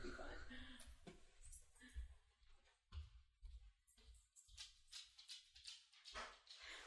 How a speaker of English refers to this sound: is putting the dog out